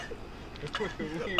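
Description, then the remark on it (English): A brief fit of choking coughs and gasping breaths from a person who choked on a sip of water, a couple of sharp bursts followed by strained, throaty vocal sounds, heard on their own over a quiet background. “Coughing on a fish over there. Jesus. So we wanted to give it. Jesus. Sorry. We just took a sip of water and I almost choked.”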